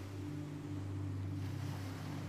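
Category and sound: nature, ocean waves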